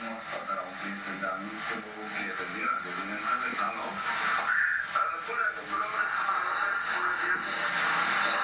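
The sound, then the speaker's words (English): Muffled, tinny voices speaking what sounds like Russian overlap continuously, interference bleeding into the KXSF radio programming like another station, steady and fairly loud for the whole stretch. “And we are getting some interference in our airwaves. What sounds like Russians?”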